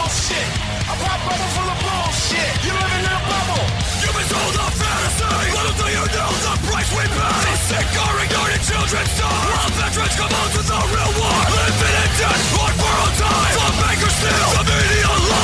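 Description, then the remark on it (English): Loud, dense rap metal music with distorted guitars and pounding drums, topped by a male vocalist's shouted, aggressive scream-rapping delivered in a rapid cadence, playing steadily throughout. “I guess he's scream rapping.”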